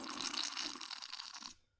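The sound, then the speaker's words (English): A noisy slurp of iced water lasting about a second and a half, wet and slightly crackly with ice, then cutting off abruptly into quiet. No one speaks. “That water tastes like garlic still. It's the ice.”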